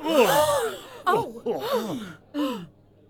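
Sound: shocked gasp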